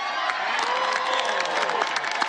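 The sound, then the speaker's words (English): A large crowd boos Lindsey Graham loudly and continuously, a dense roar of many voices with long, sliding drawn-out tones that hold steady for the whole moment, with no single speaker standing out. “We can all laugh about Lindsey Graham getting booed, and that is funny, but there's a serious story here.”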